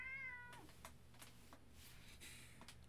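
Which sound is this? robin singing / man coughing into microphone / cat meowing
cat meowing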